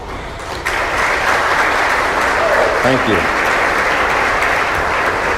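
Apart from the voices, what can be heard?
audience applauding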